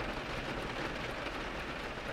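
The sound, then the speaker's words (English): Steady, dense rainfall pours down at night on a street with a sidewalk and street lamps, in a continuous hiss, fairly loud, with a broad even wash of sound and no voices. “On a night like tonight, when the street lamps are fuzzy halos and the rain starts coming down harder so that your footsteps make little slaps and squelches on the sidewalk,”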